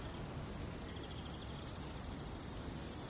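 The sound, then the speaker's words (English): Cicadas drone in a steady, continuous buzz layered over a hiss of outdoor background noise, with no pauses or talking throughout. “Ooh, cicadas.”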